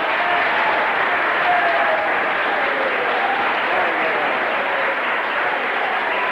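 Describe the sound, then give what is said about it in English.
An audience applauds steadily for Jesus, a dense, continuous wash of clapping hands holding an even loudness throughout, with a faint murmur of voices mixed into the clapping. “Well, let's give Jesus another clap then.”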